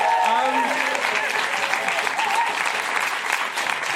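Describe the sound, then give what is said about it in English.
Steady, dense applause from an audience for the writers, book writers, composers, lyricists and performers, a broad crackling wash of many hands clapping at once, with faint voices and cheers rising through it. “Give a massive round of applause for everybody.”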